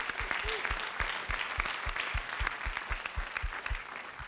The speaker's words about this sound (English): And what about this theater? How awesome is this? Can we thank them, give them a round of applause as well?